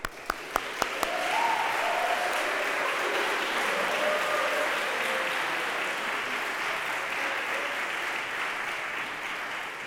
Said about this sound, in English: So we'll clap for them.